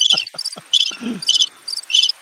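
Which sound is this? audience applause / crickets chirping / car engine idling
crickets chirping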